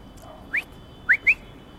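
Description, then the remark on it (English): Three short, high rising whistles to call a dog: one, a pause, then two in quick succession, each a brief upward-sliding tone against a quiet background with no talking. “Let me call my dog here, because I think we're going in the wrong direction.”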